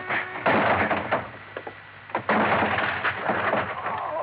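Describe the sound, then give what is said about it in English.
A locked office door is forced open with a run of heavy thuds, rattling and scraping in two loud bursts, with no voices. “The door of it was locked. Crothers, open up! Crothers! Okay, then I'll open it.”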